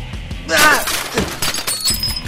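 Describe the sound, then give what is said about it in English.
A glass patio door shatters as someone is thrown through it, in a loud, bright crash, followed by scattered tinkling shards and a few dull thuds, with voices talking beneath and after the breakage. “You just threw me through a patio door.”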